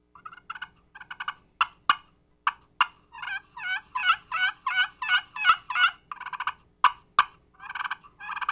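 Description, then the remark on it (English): A copper pot turkey call plays, mimicking a hen with raspy, rhythmic yelps that quicken into a run, broken by sharp clucks near the start and end. Nobody speaks. “But this is what a copper sounds like for you.”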